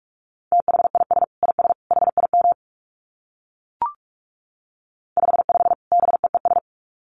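Rapid Morse code beeps at 45 words per minute on a single steady mid-pitched tone, sent in two quick bursts of dits and dahs separated by a pause broken only by one short click. No voices.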